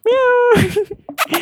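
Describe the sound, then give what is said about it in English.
A voice imitates calling a cat, as in catcalling: a drawn-out, steady, meow-like call followed by a few quick, breathy, hissing bursts, fairly loud. “Because it's like you're calling a cat.”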